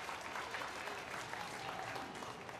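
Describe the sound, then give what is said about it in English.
Steady applause from an audience, a dense wash of many hands clapping at a constant, fairly loud level throughout, with no pauses and a faint murmur of voices underneath. “Have you ever had anybody clap for you for just sitting still?”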